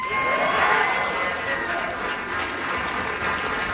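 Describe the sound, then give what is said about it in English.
A crowd in a room in Colorado cheers and applauds steadily in support of Deion Sanders, a dense, loud wash of clapping and excited voices with a few whistles and shouts rising through the buzz before easing slightly. “Listen to the support that Deion Sanders has in that room in Colorado. A lot of enthusiasm, a little bit of buzz, and some energy around the program.”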